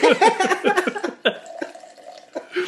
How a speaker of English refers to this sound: Pouring another water, excuse me.